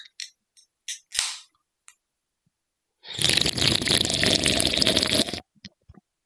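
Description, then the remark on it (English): A few quick wet smacks and clicks, then a loud, continuous rough slurp of a crisp, clean drink with no chunks, lasting about two seconds, followed by a couple of faint trailing sips. No one speaks. “Was it as chunky as some of the drinks we've drank on here? Because it sounded chunky.”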